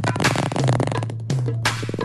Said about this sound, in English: I don't want him to put fart noises under me.